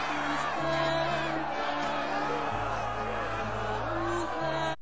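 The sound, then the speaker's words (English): In a scene from the History Channel show Nightfall, a frenzied crowd shouts all at once as Templars are about to be burned at the stake by King Philip of France, a dense, continuous roar of many agitated voices with a low rumbling drone underneath, loud and unbroken throughout. “As you can hear, the crowd is frenzied.”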